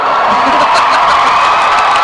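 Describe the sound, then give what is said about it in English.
A loud, sustained wash of audience applause mixed with cheering fills the whole moment, a dense, steady roar of many hands and voices with no pauses. “Literally anything I say is going to clap.”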